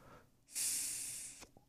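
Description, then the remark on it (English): A beer can cracks open with a sharp release and a bright, fizzy hiss lasting about a second, fairly loud, then cutting off abruptly. No one speaks. “So we're going to pop beer to say thank you to all the people that have donated this week.”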